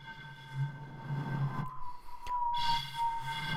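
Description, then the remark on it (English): A voice imitates blowing across a bottle, making a low, hollow, breathy hoot at a steady pitch. The tone holds, breaks off briefly midway, then resumes at a similar pitch. “Trying to do like a bottle whistle.”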